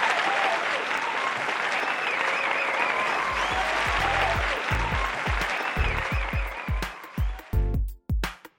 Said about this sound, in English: So thank you so much for sharing, and I'm gonna give you a little round of applause.